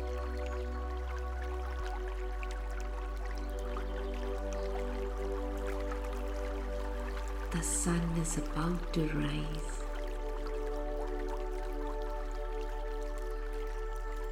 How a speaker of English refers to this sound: There is a stream nearby. Try to listen to the gushing sound of the stream.